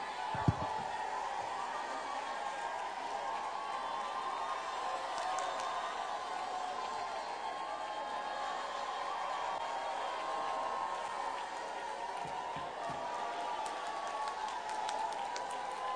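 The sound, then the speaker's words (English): An audience at a revival service shouts and cheers in a steady, unbroken roar that holds at an even loudness throughout, with a few sharp claps or thumps standing out from the din. “Come on, I dare you to shout so hard that hell has an earthquake.”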